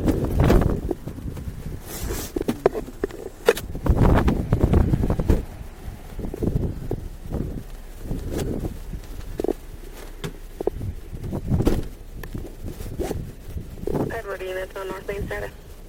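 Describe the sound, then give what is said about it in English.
A rain sound effect: a steady, dense hiss that fills the whole clip, with irregular louder bursts and crackles, and a brief wavering tonal whine near the end. “Just going to start the rain here, okay?”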